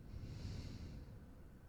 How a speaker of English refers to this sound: And now, can you care by bringing whatever you notice, whatever feeling is there or not there, closer to you by breathing 3 to 5 times. Notice what's there and breathe in through your nose and out.